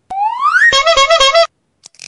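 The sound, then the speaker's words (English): A quiz team's buzzer sound effect on a quiz show: a bright tone slides steadily upward, then breaks into five quick, loud, buzzy pulses before cutting off, followed by a faint brief crackle. “Then the teams have buzzers”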